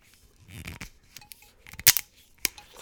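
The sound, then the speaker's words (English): The metal cap seal of a gin bottle being twisted and cracked open: some scraping and crinkling, then two sharp, bright snaps, with a quiet rustle between them. “Crack the little metal off, cap down, and I will be tasting with a clean Glencairn glass.”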